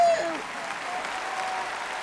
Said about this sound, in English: they're going to add the claps. Because she's like, she's like, they're going to add the claps. Just don't say anything.